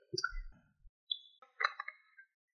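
Someone drinks water from a glass: a soft low gulp and slurp, then a few bright glass clinks and ringing taps as the glass is handled. No one speaks.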